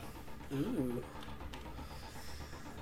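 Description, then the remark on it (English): A person briefly imitates panting with a short, voiced, wavering huff, then fades into a quiet background murmur for the rest of the moment. “I think he's panting a little bit.”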